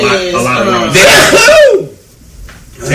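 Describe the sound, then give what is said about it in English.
A single sharp sneeze bursts out, a quick breathy intake followed by a loud explosive burst, then a brief quiet pause before faint breath or voice resumes. “Bless you.”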